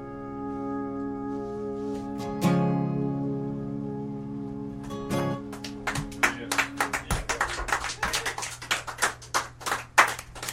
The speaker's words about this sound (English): Thank you. Clap pretty soon, man. Oh, everybody's clapping. It's an addictive thing.